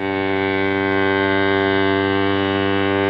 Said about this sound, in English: I think your phone just got a notification. Ah, that's not a phone. That's a foghorn.